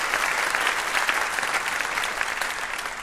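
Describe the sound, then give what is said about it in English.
A studio audience on the show Ask Me Another applauds guest Piper Kerman, a dense wash of many hands clapping at a loud, even level for a few seconds without any voices breaking through. “What a round of applause for Piper Kerman.”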